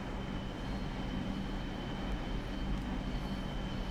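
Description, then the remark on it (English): A looped mono recording of a moving train rumbles steadily, a dense low roar with a faint high whine and no distinct track clacks from the railroad ties. The level holds even throughout, with no voices. “Look, you don't even hear the railroad ties.”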